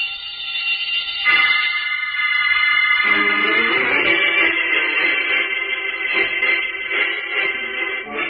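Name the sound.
burglar alarm ringing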